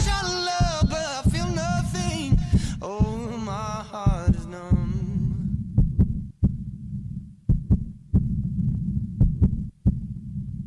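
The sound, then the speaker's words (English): The heartbeat of a child in need thumps in a steady rhythm. For the first half, layered singing voices swell over it, then they fade and the heartbeat continues alone. “What you hear isn't just any beat, it's the actual heartbeat of a child in need.”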